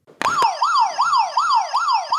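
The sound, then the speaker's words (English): A quiz buzzer goes off during a buzzer round as a loud, siren-like electronic wail, rising and falling in quick repeated sweeps about five times in two seconds, with no talking over it. “This is a buzzer round, so are you ready? Yep, buzzer's ready.”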